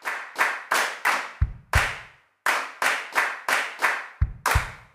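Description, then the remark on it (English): A group claps together in a steady rhythmic pattern, sharp unified bursts with a brief pause midway, occasionally joined by deeper thumping beats, with no voices. “If you would like to, join in these claps with them.”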